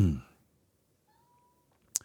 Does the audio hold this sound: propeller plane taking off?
no